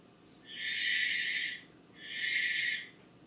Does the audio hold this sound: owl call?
yes